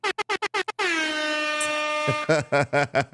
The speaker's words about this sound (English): You and that air horn, bro. That's funny.